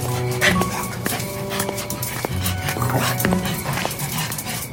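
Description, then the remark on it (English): A dog named Strawberry, out on a night walk, gives several short whining yips and whimpers in quick succession, moderately loud, over a steady, noisy outdoor background. “That night, after dinner, Tito went out for a walk with his dog, Strawberry.”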